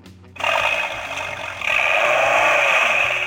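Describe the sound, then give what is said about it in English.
A tinny, buzzing Dodge Viper engine sound played from a small gadget kicks in abruptly, idles roughly, then revs up louder and brighter partway through, rumbling on steadily with no talking. “That sounds like a Viper. It is a Viper.”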